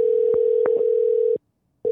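A steady, mid-pitched electronic phone ringback tone, heard while placing a call, sounds clearly on its own, holding for over a second, briefly cutting to silence, then starting again, with faint clicks on the line.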